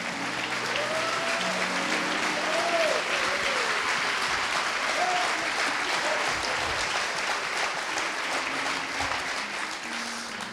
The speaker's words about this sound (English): Would you give them and … a good round of applause?